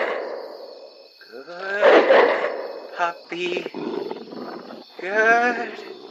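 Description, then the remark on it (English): An angry dog-like creature that has just been shot growls and roars in several loud, raspy bursts, rising and falling in pitch, with low rumbling growls filling the gaps between the louder roars. “Bad news, this thing seems pissed, and I need to call recon ASAP.”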